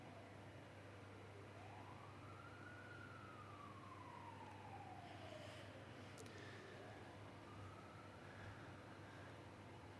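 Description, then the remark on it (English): An emergency vehicle siren outside wails, rising and slowly falling in a long sweep, then a fainter siren tone follows, all over a steady low background hum with no talking. “Lord God, even as we spend a few of these moments in silence, we hear the sirens around us and the sense of life that is going on all around us, Lord.”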